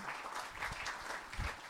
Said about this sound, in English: David, let's stand up and give David a big round of applause.